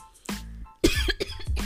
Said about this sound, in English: I can't. I'm coughing. I need some water. I need some water. Now that my throat is moist. Sorry.